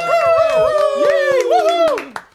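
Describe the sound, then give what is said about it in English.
A dog named Abby barks and yowls in a loud, wavering, sing-song voice whose pitch rises and falls over two seconds, with sharp taps or clicks scattered through it. “She's barking.”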